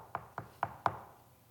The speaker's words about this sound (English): I've seen it in your hearts and minds as someone gets sick in the church and all of a sudden there's a knock on the door.